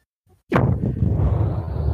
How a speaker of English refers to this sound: You said that we needed more explosions on the show, so we made sure that we got explosions for you. Okay. Yeah, there's a big old nuke right here.